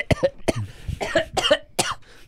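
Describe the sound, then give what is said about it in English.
A person coughs several times in quick, irregular bursts, fairly loud, with harsh rasping breaths between the coughs and no talking. “Sorry, I'm coughing.”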